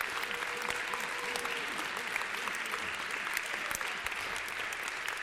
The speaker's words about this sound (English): Could you give these brothers and sisters a round of applause, please?